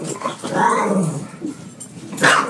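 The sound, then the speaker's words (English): Dogs growl and snarl in a sustained, rumbling stretch, ending with a sharp bark or yip; no one speaks. “Dude, why are the dogs down here?”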